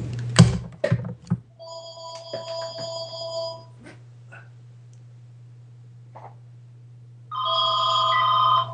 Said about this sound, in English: Hey, I got a phone call. All right, hold go on. Get it.